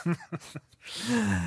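A short run of abrupt coughs from a person with COVID, three quick bursts followed by a longer, rougher, breathy cough, fairly loud with no talking.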